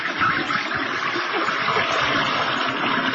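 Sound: toilet flushing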